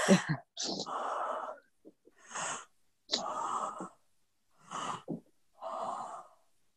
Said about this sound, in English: I'm yawning just just thinking about it.